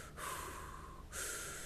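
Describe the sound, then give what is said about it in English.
A voice imitates heavy breathing while aiming a sniper: two loud, breathy exhales, the second following a brief pause, with no words spoken. “You don't remember breathing?”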